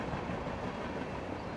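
A steady rumble of a train rolling along the rails, with a dense, even wash of mechanical noise and faint rattling throughout, and no voices.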